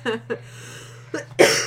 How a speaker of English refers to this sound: Sorry. You should be. Sorry, I'm coughing. It's fine. I cough all the time.